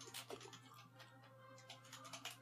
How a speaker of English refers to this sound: Nice mechanical keyboard, buddy. You like it?